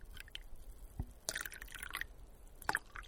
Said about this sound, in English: This is my third-ish cup of coffee that I'm pouring.